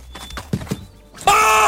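A few hollow hoof clops sound at an unhurried pace, then a horse breaks into a loud, shrill neigh that carries to the end.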